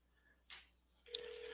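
A soft burst of line noise, then a click, and a steady ringback tone begins on an outgoing phone call, humming evenly until the end. No one speaks.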